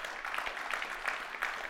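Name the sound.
audience clapping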